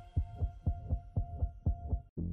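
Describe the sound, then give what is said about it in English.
A fast, pounding heartbeat thumps steadily, about eight deep beats in two seconds over a faint constant hum, before cutting abruptly to a low droning tone. “I gave her a reassuring pet, and with my heart pounding, I paused to listen.”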